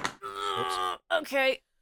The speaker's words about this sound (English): Okay. My chair's broke, sorry.